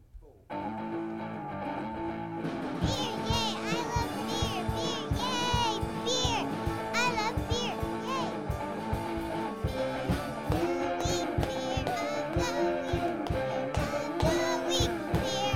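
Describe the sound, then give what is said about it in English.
A short, upbeat beer-of-the-week jingle of several voices singing together in harmony over steady, rhythmic hand claps from two people, loud and continuous for about fifteen seconds. “It's the clapping chorus.”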